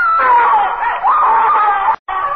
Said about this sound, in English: And I saw, heard her screaming.